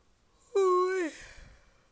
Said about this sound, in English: You say why I'm yawning? It's because I've been recording for the past 2 hours. I've been recording for the past 2 hours and now I do not have any content. That's why I'm yawning. Because I'm tired.